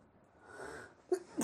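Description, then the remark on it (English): A small, quiet sneeze: a soft breathy intake builds up, then two quick sharp bursts close together. No one speaks. “Bless you.”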